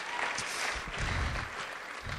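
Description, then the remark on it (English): A crowd claps steadily, the many hands blending into a dense, even wash of applause that holds at a constant level throughout, with a low rumble of the room beneath it. “let's give Jesus a hand. Let's clap.”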